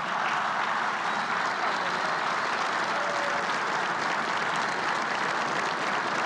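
Steady applause from a crowd for the Lanier family at a Cardinals tribute to Max Lanier, a dense, even wash of many hands clapping that holds at a constant level for the whole stretch without pausing, with no voices standing out.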